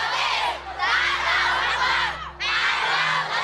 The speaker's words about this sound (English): "Down with corruption! Give us back our land," they chanted.